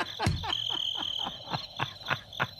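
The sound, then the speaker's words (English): Crickets chirp in a steady, rhythmic pattern over a continuous high-pitched trill, a short quiet night-time chorus with no talking. “Stop with those crickets.”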